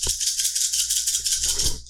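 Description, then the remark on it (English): Dice drop and rattle across a hard floor, giving a steady hissing clatter with a few sharper knocks mixed in, fading out after about two seconds. No one speaks. “You hear that, listener? That's dice, and it's been dropped. It's on the floor.”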